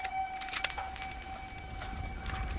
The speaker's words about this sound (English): Okay, yeah. Coins. Those are shell casings. Those are shell casings. There's some shell casings and some coins. There are some coins in there, too. There's both, yeah.